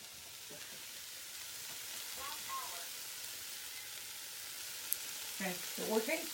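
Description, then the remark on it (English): Onions sautéing in a pan give off a steady, hissing sizzle throughout, with a few brief clinks and faint murmurs rising toward the end. “Once you're done with sauteing the onions and you've sauteed them for about 10-15 minutes”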